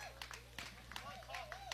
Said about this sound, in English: Here that gets a good hand from the crowd here. Southern Boone supporters that made the trek to Booneville.